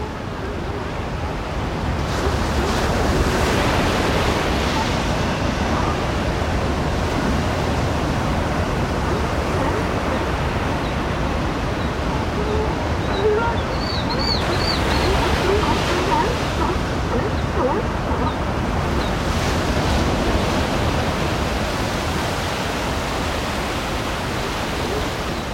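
Pacific Ocean surf rolls against a rocky coast in a steady, full roar, with waves swelling and surging every several seconds, close and loud with no voices.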